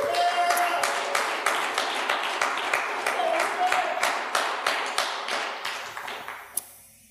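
Applause from an audience: a dense, steady patter of many hands clapping for several seconds, gradually thinning and fading near the end, with a few sharper individual claps standing out.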